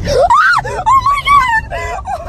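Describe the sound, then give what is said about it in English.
A voice imitates a frightened scream, as a reaction to a mouse dropping on someone in a car: loud, high-pitched shrieks that rise and fall and waver over about two seconds, ending in a shaky, quavering cry. “That's exactly what I would sound like.”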